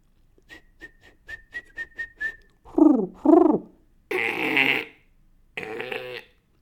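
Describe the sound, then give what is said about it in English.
A person whistles a string of quick, bright chirps in a steady rhythm, imitating birdsong, followed by a few longer, louder whistled calls, with no talking. “The birds will be chirping.”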